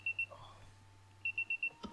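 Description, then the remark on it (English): An alarm clock goes off in a bedroom, beeping in short, evenly spaced high-pitched tones: a pair of beeps, a pause, then four more in steady rhythm, fairly quiet over a low hum. “Your alarm is going fucking off.”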